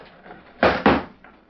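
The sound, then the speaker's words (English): A heavy trap door swings shut with two solid thuds in quick succession, loud, over a low hum, closed right after a man has been dropped down through it onto a mattress below. “Close the trap door.”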